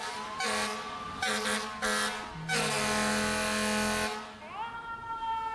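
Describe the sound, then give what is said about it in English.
A fire truck's air horn blares loudly: three short blasts, then one long sustained blast, followed by a rising wailing tone as it fades off. “Well, mine is, would you rather, every time you use your turn signal, and you have to use it, you can't just not use your turn signal, it sounds like a siren, or it sounds like a fire truck horn?”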